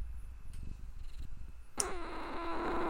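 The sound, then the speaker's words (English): A cat purrs with a low, steady rhythmic rumble, then a louder, raspier sound cuts in for the final second. No one speaks. “How you feeling, kitty co-host?”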